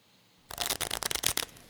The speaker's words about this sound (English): I shuffle. I lay out a 3-card spread, and I ask a specific question.